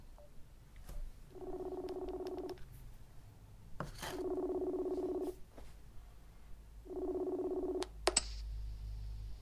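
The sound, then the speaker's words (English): A phone call being placed: three steady electronic ringing tones, each about a second long with pauses between, plus a few soft clicks and a sharper click near the end, no voices. “Just hit and call here.”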